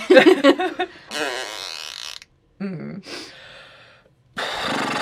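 A series of wet, sputtering fart noises in several bursts, some raspy and buzzing, others higher and squeakier, separated by short silent gaps and fairly close and loud.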